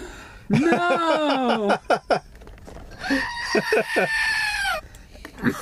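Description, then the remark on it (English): A goat bleats twice, loud: a long wavering cry, a short pause, then a second drawn-out bleat with a trembling, pulsing quality. “And the goat. Yes. The goat has become synonymous.”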